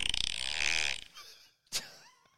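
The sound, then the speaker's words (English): A fart sound effect played from a phone: a loud, buzzy, sputtering blast lasting about a second, followed by a brief pause and a short sharp burst, with no one talking. “What's more farts?”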